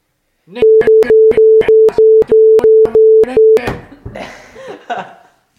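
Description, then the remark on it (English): A loud, steady censor bleep tone holds for about three seconds, punctuated by evenly spaced clicks, then gives way to laughter and muffled voices. “Should we just end this with like a bunch of bleeps and shit?”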